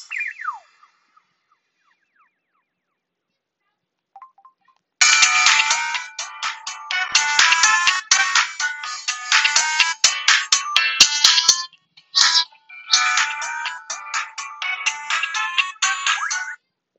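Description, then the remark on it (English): A short chirp, then a few seconds of near silence before a loud, bright cell phone ringtone, the Verizon Wireless one, starts, playing a busy repeating electronic melody with brief pauses for about twelve seconds. “Now here are the ringtones.”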